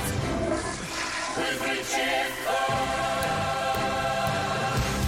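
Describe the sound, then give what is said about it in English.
A toilet flushes with a steady, rushing gush of water lasting several seconds, loud, with a faint tonal hum running underneath. “Flush, flush, it's the toilet.”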